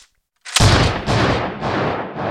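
A shotgun the owner keeps behind the counter fires: after a brief silence, a sudden, loud blast cracks out, followed by three more heavy, rumbling booms roughly half a second apart, each decaying into a dull roar. No voices.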